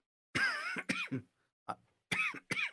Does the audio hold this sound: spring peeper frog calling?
no